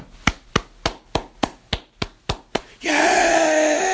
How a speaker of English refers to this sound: Let me give a soul clap, too.